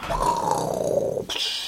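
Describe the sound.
A person voices a loud, strained roar imitating a wounded creature that has just been hit but keeps charging, one sustained growling cry lasting just over a second before cutting off into a brief breathy tail.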